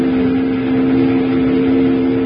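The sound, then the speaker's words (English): A riverboat steam whistle, sounded by pulling its whistle cord, blows one long, steady blast, a loud, low, reedy tone that holds unbroken for the whole moment over a rushing hiss, with no voices. “Jingles, grab that whistle cord and pull it.”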